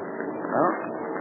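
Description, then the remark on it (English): A steady, droning engine roar of enemy scouting planes, including a German Heinkel, passing overhead, swelling briefly louder midway before settling back to an even hum. “The planes will pass across that open space in just a moment.”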